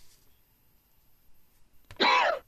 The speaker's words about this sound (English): Yeah, a cough